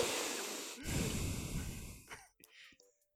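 Heavy, close breathing right up against the microphone: a long breathy exhale followed by a deep, noisy intake of air, then a few soft clicks and faint sounds as it fades.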